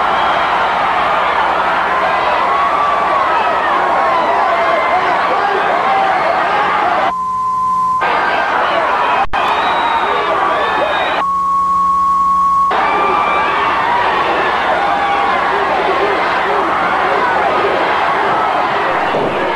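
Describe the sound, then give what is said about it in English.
A loud wrestling crowd cheers and roars nonstop, drowning out Flair, who isn't mic'd and whose muffled voice is buried underneath, with two steady high censor bleeps cutting in partway through. “But they did that thing that I love, where you can only hear a little bit of what Flair is saying because the crowd's so loud and Flair isn't mic'd.”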